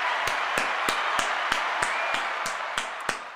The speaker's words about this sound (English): Actually, you know what? Hugo de Jong deserves this from me. Finally, someone has made sense. Give you another round of applause.